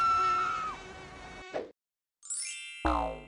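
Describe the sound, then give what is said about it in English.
A high, whining mosquito buzz drones steadily, cuts out for about half a second, then returns in shrill rising and wavering bursts. No one speaks. “Just imagine, instead of being a stupid comment, a microaggression is a mosquito bite.”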